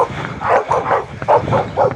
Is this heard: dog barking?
yes